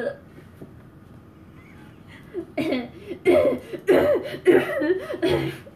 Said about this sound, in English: I'm choking. Oh my goodness, my pet is choking. Someone help, please.